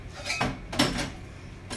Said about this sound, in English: Yeah, we're still trying to clean the dishes, so we have a lemonade cup.